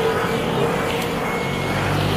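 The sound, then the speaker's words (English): A loud moped engine drones steadily, a buzzing, rumbling motor noise filling the whole moment with no voices over it. “Oh, I do love a nice loud moped.”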